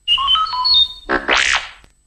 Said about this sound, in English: You will know it is time to turn the page when you hear R2-D2 beep like this.